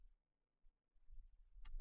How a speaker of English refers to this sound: Yay! Dice and rolling of the dice